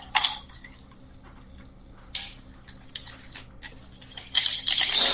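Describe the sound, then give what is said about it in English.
Sharp clinks of ice against a highball glass, followed by a steady splashing pour of a deep red cocktail with grenadine syrup and bitters over the ice that builds in the final seconds, with no talking. “Pour it over a highball glass filled with ice, like so.”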